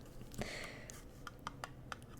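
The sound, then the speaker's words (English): Long fingernails tap on a glass jar of a Christmas candle, Walmart's limited-edition Candy Cane Cheer in peppermint and vanilla, in soft, irregular clicks, one sharper tap leaving a brief bright ring, then a scattered series of light, crisp taps. No one speaks. “ASMR Christmas Candle Tapping (Long Nails)”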